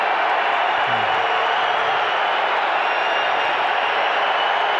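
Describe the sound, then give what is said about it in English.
A basketball arena crowd roars steadily for about five seconds, a dense, sustained wash of cheering voices filling the space without letting up, after a player misses the first of his free throws. “Crowd wants their chicken.”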